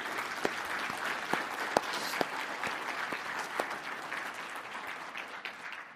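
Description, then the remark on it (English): An audience at a worship service applauds God steadily, a dense patter of many hands clapping with a few sharper individual claps popping out, holding an even level for the whole stretch with no voices. “Why don't you give God a round of applause for what he has done?”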